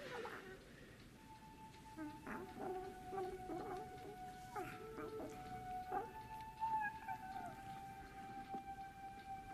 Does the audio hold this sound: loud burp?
no